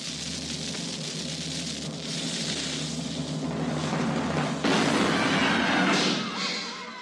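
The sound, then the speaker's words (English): A cannon firing sound effect: a long, noisy rumbling roar that swells into a sharper blast about two-thirds of the way through, then slowly fades. No voices. “It is shot out of the cannon.”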